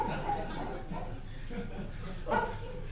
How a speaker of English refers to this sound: Okay, big dog, big dog. Whoa. No, an injured dog, an injured dog.